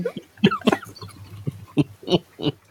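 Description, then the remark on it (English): A voice imitates a fart with a run of about seven short, buzzy, low blurts, sputtering in quick irregular bursts, with no words spoken. “He has to do the fart noise.”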